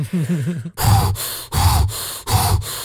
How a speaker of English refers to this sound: I got to channel my Mel Gibson breathing techniques here.